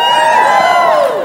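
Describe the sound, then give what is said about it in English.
A crowd at a worship gathering yells and cheers together in a loud, sustained roar after being asked to yell if they are good, many overlapping high-pitched voices whooping at once for just over a second. “Yell at me if you're good.”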